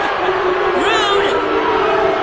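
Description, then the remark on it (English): An audience boos a woman in a loud, steady wash of many voices, with one voice briefly rising and falling in pitch above the crowd partway through. “They're booing you, girl.”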